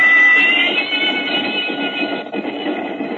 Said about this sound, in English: The train left Chicago and headed north, and then slightly west over Illinois and Wisconsin.